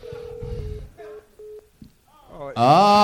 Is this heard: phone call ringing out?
yes